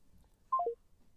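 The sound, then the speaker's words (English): A phone line's disconnect tone as a call drops: three quick electronic beeps stepping down in pitch, clear, over a faint hum with no voices. “Nawala sila, na-disconnect.”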